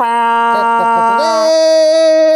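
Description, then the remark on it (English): A voice imitates an air horn with a loud, buzzy, sustained blare that wavers briefly, then jumps to a higher pitch and holds steady to the end. “I did an air horn.”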